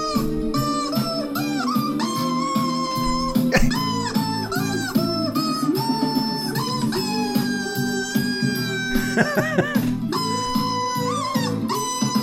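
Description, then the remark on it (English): A pop song sung in chicken clucks and squawks pitched to the melody over a steady backing track, with wavering, swooping high notes toward the end. “Wait till you hear the chicken hit the high note.”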